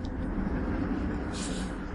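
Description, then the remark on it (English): A deep, continuous rumble of an approaching train, holding a steady loudness throughout with a dense low-end roar and a brief brighter hiss partway through. “And there's a train coming.”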